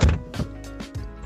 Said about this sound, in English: Go ahead. Nah, we're going to leave that in. That was a good cough.